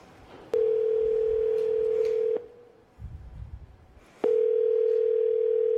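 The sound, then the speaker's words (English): A steady, loud telephone dial tone from a phone at a Kinko's store hums for about two seconds, cuts off with a click, a brief muffled rustle follows, then the dial tone returns and holds to the end. “Sorry, so I got the folks here at Kinko's to let me use the phone.”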